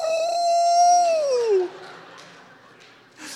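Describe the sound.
A person imitates a wolf-like howl, the "Ow!" cheer a mother gives at basketball games whenever her daughter shoots a basket: one loud, steady wailing note that bends downward and fades after about a second and a half, leaving faint background noise.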